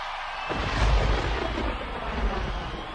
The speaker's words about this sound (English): And then you think it's come to the end because there's thunder, right?